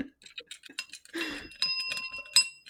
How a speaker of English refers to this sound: No, it didn't sound. Wait, hold on. Wait. Well, the bell's nope. Broken, guys.